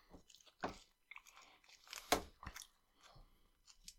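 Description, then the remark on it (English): Crisp snacks being crunched and chewed, with a string of sharp, irregular crackling bites, one especially loud crunch partway through, and no talking. “These are like my daily driver snacks.”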